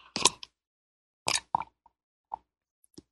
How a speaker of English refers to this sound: I'm going to take a sip of my mate tea here. I managed to salvage some of it.